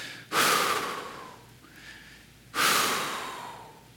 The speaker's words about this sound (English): And I can just picture her sitting there taking a couple of breaths.